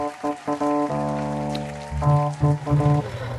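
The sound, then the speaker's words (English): Hot tub jets, with the water at 106 degrees, churn and bubble steadily, with a humming, motor-like drone that drops and shifts in pitch partway through and pulses toward the end. No one speaks. “Should we do jet section? Yeah, jet section.”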